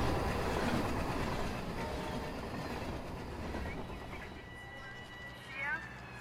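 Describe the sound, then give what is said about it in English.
A train roars past on the tracks, a loud rushing rumble with rhythmic clattering wheels that gradually eases off, followed by thin high-pitched metallic squeals near the end. “I pull him out of the way as the train goes flying past.”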